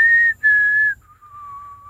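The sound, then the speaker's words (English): A person whistles a short four-note tune, a few clear sustained notes ending on a lower, longer tone, with no talking over it. “Can you do the Mockingjay whistle?”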